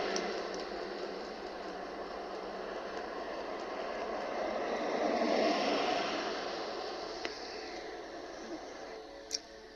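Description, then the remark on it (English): Broad road noise swells as two identical white trucks without license plates drive past, growing louder toward the middle and fading again, with a short sharp click near the end. No one speaks. “and as you'll see in the beginning of the video, there are two white identical trucks that drive by.”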